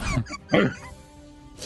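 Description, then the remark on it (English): A person vocally imitates a puzzled, impressed dog cocking its head to the side: a short throaty whine followed by a louder rising grunt, then quiet. “The dog kind of cocks its head to the side, seeing you do this. And if a dog could look impressed, it does.”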